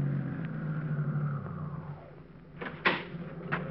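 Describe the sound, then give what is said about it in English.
A car engine, kept running because the battery is down, idles with a steady low rumble while stopped at a sandwich shop, its pitch easing slightly, followed by a few sharp clicks and clunks near the end. “Say, my battery's down, so just keep the motor running while I'm gone, will you?”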